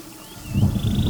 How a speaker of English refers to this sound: I'm lost again somewhere deep in the jungle. I'm surrounded by snakes and wild animals.